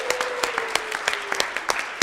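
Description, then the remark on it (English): Audience applause at a campus ceremony recognizing students: a steady patter of many hands clapping, with sharper individual claps standing out at irregular intervals and a faint tone running underneath. “Let's give a round of applause for all of our enthusiastic.”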